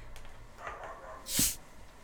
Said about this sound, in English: I'm going to be right back. My dog's freaking the fuck out. And I'm going to go see why. Be right back.